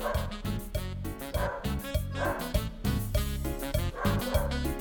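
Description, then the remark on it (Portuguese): A female pet dog barks over and over in quick, steady bursts, loud, with no pause throughout and no one talking. “Ah, é a cachorra latina. É a minha cachorra.”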